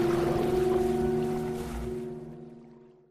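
A steady, soft wash of ocean waves blends with a sustained, droning musical tone, both gently fading away toward silence over a few seconds, with no voices.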